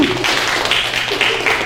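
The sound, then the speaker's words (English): Dense, continuous clapping from a show audience, steady and fairly loud throughout with no gaps, many people applauding together when prompted by the comedian. “Now clap if you think it's not gay.”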